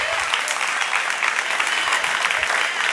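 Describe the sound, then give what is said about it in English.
An audience claps steadily in praise to God, a dense wash of many hands, loud and sustained for the whole stretch with no voices rising above it. “Come on, clap your hands.”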